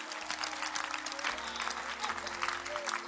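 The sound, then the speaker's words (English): An audience applauds for the Lord Jesus, a dense wash of many hands clapping at once with no clear individual rhythm, holding a fairly even loudness throughout with a low hum underneath. “Clap for the Lord Jesus.”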